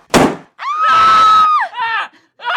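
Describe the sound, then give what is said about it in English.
A single sharp, loud gunshot, fired through a door from the hotel corridor, cracks out, followed at once by a long, high-pitched scream and then shorter frightened cries. “Someone put a gun through that door and fired.”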